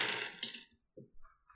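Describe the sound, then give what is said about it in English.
Dice are rolled across a hard table during a tabletop game session to resolve attacks, clattering and rattling with a couple of sharp clicks as they bounce, then a few softer taps as they settle. Fairly quiet, with no voices. “What I'm going to do is I'm going to roll them and see if they're close, and then I'll figure out who they're attacking.”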